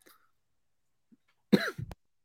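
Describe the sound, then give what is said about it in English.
A single harsh cough bursts out after a near-silent stretch, ending with a short rough throat-clearing rasp. No one speaks. “What happened to the cough drops in the water? I feel like that was clutching up for you.”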